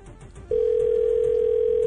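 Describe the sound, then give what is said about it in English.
A steady, mid-pitched telephone busy signal switches on after a brief quiet moment and holds unbroken and loud to the end, with no voices. “Oh, it's busy.”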